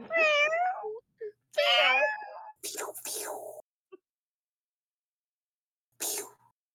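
Cats yowl with rising, wavering meows, then break into harsh hissing bursts, a short loud scuffle of squalls followed by a brief pause and one last snarling hiss.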